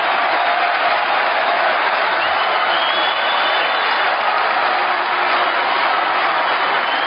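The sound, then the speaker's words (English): A large convention crowd applauds in a loud, steady wash of clapping with a dense, crackling texture. It holds an even level throughout, with no voices standing out. “And the Trump camp can applaud to that.”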